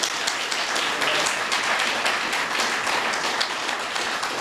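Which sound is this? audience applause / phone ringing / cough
audience applause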